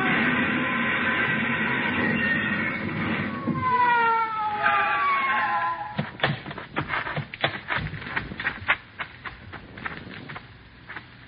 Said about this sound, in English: Whoever it was paid no attention to our siren, but we pulled closer, hugging the curves by using the whole road.